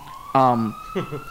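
A steady, high police siren wail hangs in the background at moderate volume while a person speaks two short bursts over it.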